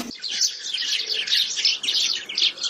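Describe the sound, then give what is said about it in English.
A steady stream of bright, overlapping house sparrow chirps, busy and continuous like a small flock chattering, with no voices present. “Tweet of the week this week, House Sparrow.”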